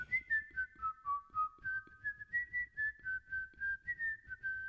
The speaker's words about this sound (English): It's time for Guess That Song, Whistling Edition. I'll whistle a song, and you guess what it is. Here we go.